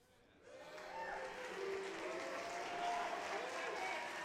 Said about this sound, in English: You bunch of sinners in the hands of an angry God. That's those of you who are booing.